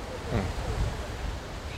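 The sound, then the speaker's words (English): Steady ocean surf washes against the shore of a coastal community in Senegal, a broad continuous rush with low rumbling swells, mixed with some wind noise. “What is a dangerous projection for the world is already grim reality here in Senegal, where the ocean that has defined the lives in this community for so long is now drifting them into an uncertain future.”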